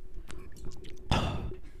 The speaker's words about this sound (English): I'm going to drink some water real quick. You do that, buddy. In the mic.